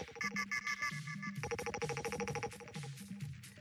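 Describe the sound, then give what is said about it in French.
A telephone rings with a loud electronic ringtone, a rapid, pulsing chirp pattern over a bouncy little melody that repeats steadily for a few seconds, with no voices, as a morning radio host calls a listener live. “À 7h50 tous les jours, sois prêt à décrocher ton téléphone parce que ça va envoyer du lourd.”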